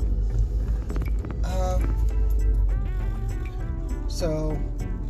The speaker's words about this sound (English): And I apologize, I'm driving my car again, so if you hear clicks, it's me turning my turn signal on, just like now.